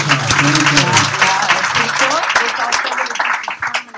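A burst of applause effect: dense, crackling clapping from a crowd, steady and loud for several seconds before thinning slightly at the end, with a low tonal murmur early on.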